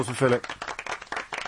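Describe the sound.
A short round of applause, a quick patter of hands clapping close by, briefly overlapping a voice at the start before fading out.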